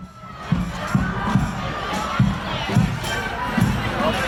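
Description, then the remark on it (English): A loud street crowd protesting against climate change in Genova, Italy chants in a steady rhythm, voices rising in regular pulses roughly twice a second over a constant roar of many people shouting together. “We are in Genova, Italy, protesting against climate change because politicians today are not willing to do enough about it.”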